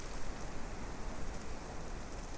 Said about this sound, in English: Cottonwood leaves and aspen leaves have a beautiful little patter. It sounds almost like rain as the leaves tap against each other.